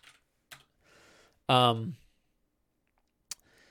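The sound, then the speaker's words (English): Sparse, quiet computer keyboard typing while creating a new page inside another page: a few sharp clicks spaced apart with soft rustling between them, interrupted midway by a short burst of louder voice. “but the cool bit is that means you can make a page in another page while you're typing.”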